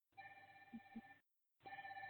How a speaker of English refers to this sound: I don't know why that phone is ringing. We don't even know where that phone is. It will stop eventually. Yeah, no, this is the type that does not stop.